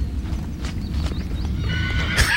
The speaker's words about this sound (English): Anyway, another horse whinnying, and here we go,